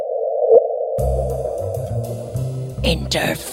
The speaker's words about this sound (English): And that little bloop is actually a gravitational wave hitting the Earth in real time? Exactly. Exactly.